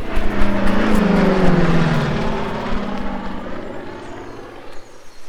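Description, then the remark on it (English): A loud, droning roar of six propeller aircraft passing overhead as they come in to land, engines whining and shifting pitch as they descend, the sound gradually easing off toward the end. “There's six planes. It's the Banshees! Come on, before they land!”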